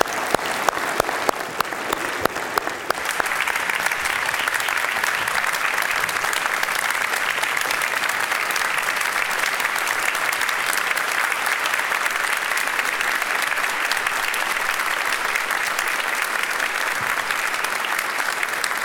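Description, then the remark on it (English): A church audience breaks into sustained applause for its executive pastor of administration, many hands clapping in a dense, steady roar that swells after a scattered start and holds strong for nearly twenty seconds. “Now, just because you clap doesn't mean you can skip the Unity Hall, okay?”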